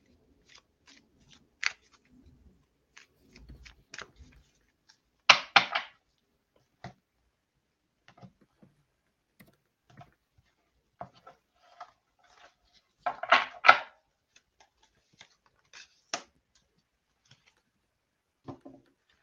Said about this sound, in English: So we'll shuffle the cards.